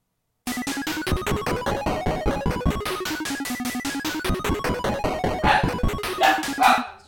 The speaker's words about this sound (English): This podcast is brought to you by Inopportune Barking.